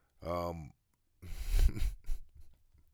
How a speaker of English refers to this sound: And I'm sorry if you heard banging and clicking during the show, because my headphone wires were banging against the desk